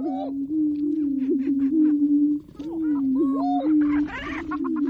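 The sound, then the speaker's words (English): Male greater prairie chickens booming at a lek breeding ground at dawn, performing display rituals and competing for females, recorded by nature recordist Lang Elliott: overlapping low, hollow moaning tones hold steady throughout, with sharper cackles and whoops breaking in, busiest toward the end. “Leks are breeding grounds where certain species like these male greater prairie chickens perform display rituals and compete for the affections of females.”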